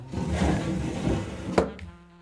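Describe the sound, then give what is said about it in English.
A wooden pull-out drawer, used to keep collected organs, rumbles as it slides open for over a second, then stops with a sharp knock and a lighter follow-up clack. No one speaks. “I keep them all over here in the pull-out drawer.”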